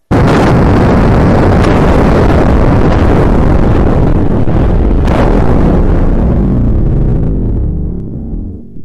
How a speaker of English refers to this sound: The crash causes the H-bomb to explode, but Kronos absorbs all the energy during the blast.